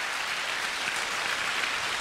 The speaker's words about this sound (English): And just want to appreciate the musicians tonight. 非常感谢我们今天的乐团。 Just the outstanding job you did. 敬拜团做非常非常好的服事。 Come on, let's give them a clap.